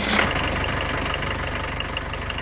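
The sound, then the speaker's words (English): A boat engine catches with a brief burst of noise, then settles into a steady, rhythmic low idle that chugs on evenly without any voices. “Ah, she starts like a firefly on a dark summer night.”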